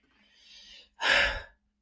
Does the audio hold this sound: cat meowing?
no